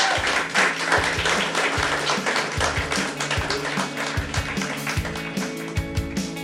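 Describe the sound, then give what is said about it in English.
A crowd applauds steadily for a panel at its close, dense overlapping claps for several seconds at a consistent, fairly loud level, with no voices over it. “Can you please give them a big round of applause?”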